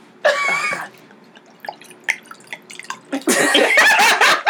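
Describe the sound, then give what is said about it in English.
Liquid pours into a glass in two splashy bursts, the first short, the second longer and fuller, with a few small drips and clinks in the pause between. “Pour you some more so you can keep talking.”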